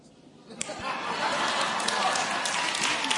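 An audience breaks into clapping after a brief quiet moment, building quickly into a dense, steady wash of applause that stays loud to the end, with some laughter mixed in.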